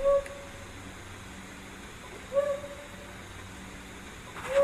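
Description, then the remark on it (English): A flammulated owl, recorded in Colorado, gives three low, soft hoots spaced about two seconds apart, each short and breathy, against a quiet, faintly hissing night background with no voices. “A flammulated owl.”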